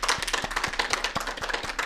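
Steady applause from an audience: a dense wash of many hands clapping at once, with a few sharper individual claps popping out of the sustained noise. No voices are heard.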